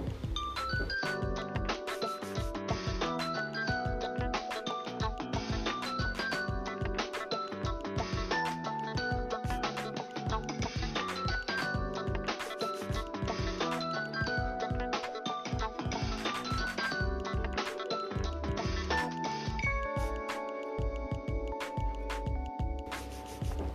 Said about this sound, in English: But I think here, in our country, Nokia set the trend. Do you remember this old Nokia ringtone that used to ring almost on everyone's phone?